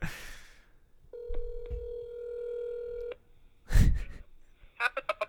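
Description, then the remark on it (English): A steady electronic telephone tone holds for about two seconds, followed by a short burst of noise and a quick series of beeping tones as a phone call is placed to a grandmother. “Let's give her a call, wish her a happy Mother's Day.”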